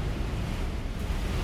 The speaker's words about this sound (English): The wild wind blew open the door of the hut, even after we placed a rock to hold it shut. I love the rattling sound, though, the gusts sending shivers through the tiny structure.